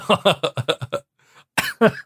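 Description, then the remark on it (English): A fairly loud coughing fit: a rapid run of about six harsh coughs, a brief pause, then two more hacking coughs. “I'm coughing now, okay?”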